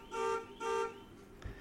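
A car horn honks twice in quick succession, each blast loud, steady and buzzy with a bright, brassy tone, followed by a short dull thump and quiet.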